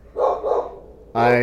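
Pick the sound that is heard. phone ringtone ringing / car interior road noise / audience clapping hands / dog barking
dog barking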